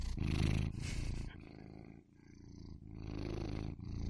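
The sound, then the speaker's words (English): A cat purring loudly, a deep continuous rumble that swells and dips with each breath, repeating in steady cycles with no voices. The cat is Steven. “So this is Steven the cat.”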